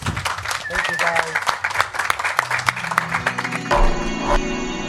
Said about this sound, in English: So let's have a round of applause, please, for ….